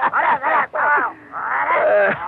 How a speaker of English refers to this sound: So now you're imitating babies, eh? Very good. Well, that sound didn't come from you. Good heavens, it came from the back of my wagon.